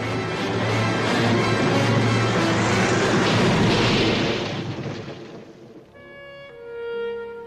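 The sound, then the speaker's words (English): A loud old-movie car crash effect from the Katharine Hepburn and Spencer Tracy film Keeper of the Flame: a dense, roaring burst of crunching noise that holds for about five seconds, then fades out into a few sustained musical tones. “The car crash at the beginning is the Katharine Hepburn, Spencer Tracy film, Keeper of the Flame.”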